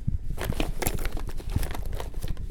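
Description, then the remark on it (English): Someone rummages through a backpack holding pans and a tarp, with continuous crinkling of plastic and rustling broken by a few soft thumps as items shift around. The sound stays steady and moderately loud, with no talking. “Listen, in my backpack, I do have some things. Let me just check.”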